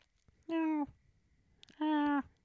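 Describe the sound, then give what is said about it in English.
A voice imitates a cat's meow twice, each call loud and drawn out for under half a second, separated by a short pause, with quiet otherwise. “She was meowing at me earlier today.”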